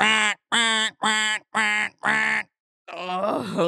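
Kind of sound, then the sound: vocal imitation, person imitating bird chirping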